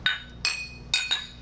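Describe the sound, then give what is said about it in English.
Four bright, ringing clinks of beer glasses touching in a toast, each with a short shimmering tail, the last two close together, with no talking. “Well, I cannot wait any longer. Cheers. Pinky's out.”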